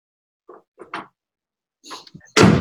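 A door is shut with a sudden loud thud near the end, preceded by a few short, quieter sounds that could be faint voices or movement.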